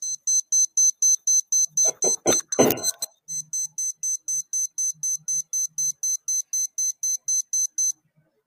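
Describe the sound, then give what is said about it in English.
A kitchen timer alarm beeps rapidly and steadily, a high-pitched electronic chirp repeating about three times a second for several seconds, with a brief clatter of handling noise partway through. “Timer's about to go off.”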